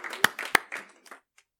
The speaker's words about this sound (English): Y'all stand up and let's just give him another clap of praise for his revelations, for his visions.